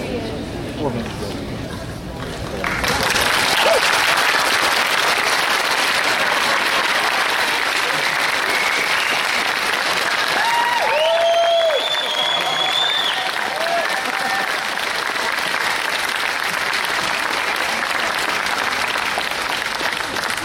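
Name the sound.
audience applauding and cheering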